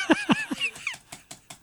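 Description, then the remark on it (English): Several short, dry mouse clicks tap out at an uneven pace, about five in a row, following a few brief, higher-pitched voiced chirps at the start. “I'm clicking away, but it's not giving a response.”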